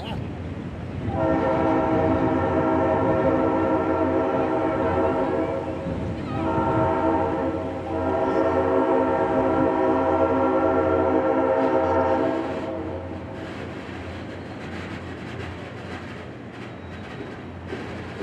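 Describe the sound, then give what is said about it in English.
A train horn on the Royal Gorge Route Railroad blares loud in long sustained blasts with a couple of brief dips, then cuts off and leaves a steady rumble of the passing train. “All right, so as we're doing this train stuff today, we're out here at the Royal Gorge Route Railroad,”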